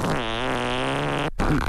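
A long, loud, buzzy fart drones for over a second with a wavering pitch, cuts off briefly, then a shorter sputtering burst follows, prominent with no talking.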